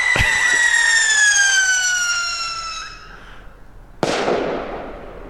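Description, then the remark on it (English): A cartoonish explosion effect, inserted as a mock brain explosion: a sharp pop, then a long descending whistle fading away, followed by a sudden loud boom with a noisy, rumbling decay. No one speaks. “Dude, seriously, insert brain explosion.”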